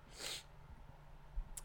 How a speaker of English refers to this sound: Sorry for the sniffles. Like I said, I got the allergy problem.